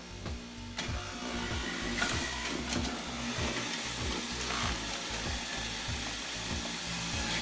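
A juicer motor whirs steadily as a cucumber is fed through, with a dense, grinding hum and regular low thumping pulses running throughout, no voices.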